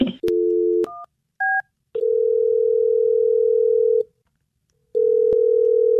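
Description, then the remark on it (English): A telephone is dialed: a dial tone hums, broken by a couple of short two-tone keypad beeps, then the steady tone returns, cuts out, and resumes with a click. No one speaks. “I'm going to dial this phone right now and see if you can make camping sexy enough to leave work for.”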